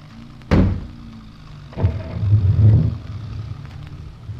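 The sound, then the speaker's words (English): Two solid car doors slam shut in quick succession as people get into the car, then an engine rumbles up loudly and the car pulls away, its low motor drone continuing steadily. “He's getting into a car. So are we, and we are following him. Get in, and off we go.”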